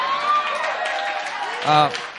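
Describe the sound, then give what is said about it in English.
An audience applauds steadily, a dense wash of clapping with voices mixed in and a short whooping cheer rising near the end. “Anyway, hey, hold that applause.”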